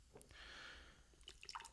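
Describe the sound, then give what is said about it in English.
Pepsi is poured hard into a glass, a steady hiss of bubbling followed by scattered drips and splashes, moderately quiet, with no talking. “And a hard pour right here”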